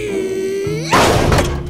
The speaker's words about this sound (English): you've got to stop kicking these doors down.